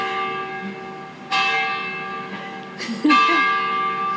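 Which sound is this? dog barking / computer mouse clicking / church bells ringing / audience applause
church bells ringing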